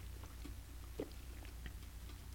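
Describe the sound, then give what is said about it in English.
Someone takes a quiet sip of water, with a soft gulp and a few small mouth clicks over a steady low hum. “Pardon me, that was a sip of water.”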